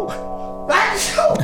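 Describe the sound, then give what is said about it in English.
A single sharp sneeze bursts out right after a brief voiced sound, loud and breathy with a quick airy tail. “Bless you. Got crazy for a minute there.”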